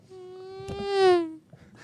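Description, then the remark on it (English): A single buzzy, nasal voice imitates a race car zooming past, its steady hum swelling louder toward the middle before cutting off abruptly, lasting just over a second with no talking. “Sounds like a tiny little race car just going by super fast.”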